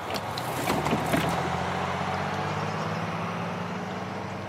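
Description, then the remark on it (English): A bus rumbles, its engine droning steadily after a burst of hissing and mechanical clatter near the start, then it labours on as it pulls away. No one speaks. “Oh, here comes the bus.”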